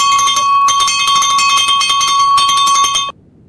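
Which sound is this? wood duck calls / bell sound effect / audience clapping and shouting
bell sound effect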